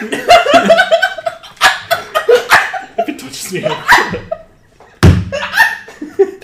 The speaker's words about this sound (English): That's a table slap. We haven't done one of those in a couple sessions.